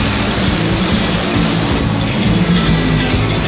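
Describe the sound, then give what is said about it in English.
Nitro funny car drag racing engines roar loudly and continuously during the final round of Nitro Funny Car at an NHRA national event, a dense, harsh wall of engine noise with a throbbing low rumble that holds steady throughout, with no voices. “This is the final round of Nitro Funny Car and Epic.”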